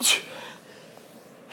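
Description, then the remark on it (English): A man sneezes once, a single sharp, breathy sneeze bursting out loudly at the start, then fading into quiet room tone with faint background murmur. “Wow, he's really avoiding... this incriminating time by sneezing, and now I feel bad for him because he's sneezing.”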